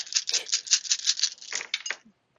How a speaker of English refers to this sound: All right, roll damage. All right. Giant pile of dice.